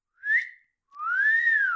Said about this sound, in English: Shut up, cheeky bird.